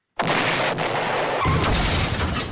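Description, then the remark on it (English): A loud explosion boom bursts in abruptly at the start of a song, followed by a sustained roaring wash of noise that deepens into a heavier low rumble about halfway through. No voices are present. “It's an explosion, like a boom, you know, like an explosion.”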